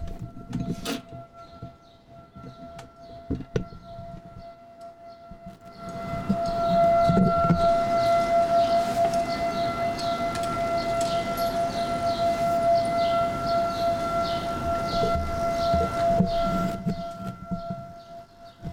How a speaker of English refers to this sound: Did you hear that, humans? That is a horn. Sounds a little like a tornado siren, does it not? Humans, that horn is for there's a couple of Hasidic Jewish neighborhoods near my neighborhood, and that horn is the, like, Friday night, hey, warning,